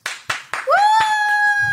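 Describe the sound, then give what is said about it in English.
Three sharp, loud hand claps in a steady slow rhythm, then a high whistle-like tone that swoops upward and holds steady until the end, with a few faint taps beneath it. “I feel like all the Muppets are going, whee, clapping.”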